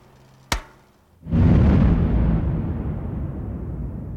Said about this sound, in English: hands the detonator to the blast man, who shouts out the final warning. Fire in the hole!